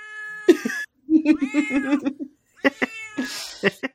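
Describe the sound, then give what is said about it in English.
A cat meows several times up close: a clear drawn-out meow, then a run of short chattering, trilling calls, followed by a few more brief, breathy cries. “And if you could just meow maybe quietly to let us know.”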